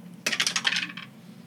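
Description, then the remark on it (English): Dice clatter across a hard tabletop in a quick, rattling burst of small clicks lasting under a second, moderately loud, then settle into quiet room tone; a roll for a concentration check during a tabletop game. “Gotta roll a concentration check.”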